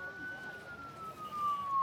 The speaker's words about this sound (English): but as you're getting closer to the direction that it is, you're starting to see a big crowd gathering or heading that direction, and you see like police vehicles with their sirens and lights blinking rushing in the same direction.